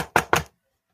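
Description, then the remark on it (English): Two quick, firm knocks on a door, evenly spaced, each with a short ringing decay, followed by silence; someone knocking so that a woman inside will come to the door. “Let me see if I can knock and she'll come.”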